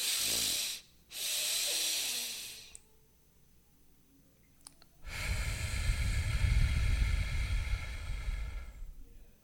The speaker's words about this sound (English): And then I'm exhaling through my mouth for double the length of the inhale. So you can't see this because we're not on video, but in audio, this is what it sounds like if you can picture me breathing.